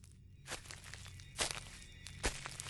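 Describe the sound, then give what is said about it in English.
Three slow, evenly spaced footsteps fall on a cloistered garden lawn, each a soft brushing crunch, fairly quiet against a low steady background hum with no voices. “But through her sobs, Tess heard footsteps over the cloistered lawn.”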